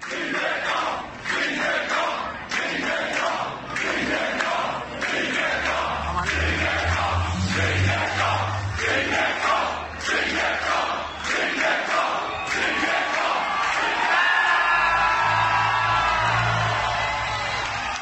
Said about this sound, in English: Oh, I've seen this. A bridge. Yeah, and the crowd are chanting his name.